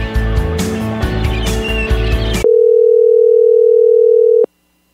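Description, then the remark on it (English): Busy, dense music cuts off abruptly and a steady, loud telephone dial tone, for a call to Mr. Windy, hums alone for about two seconds before stopping sharply. “Calling Mr. Windy as he's preparing for a 21-day tour.”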